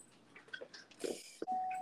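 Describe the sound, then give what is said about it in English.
A phone notification sound: a steady, mid-pitched electronic tone rings out at the end, after a few brief soft clicks and rustles. No one speaks. “Hold on, got a notification.”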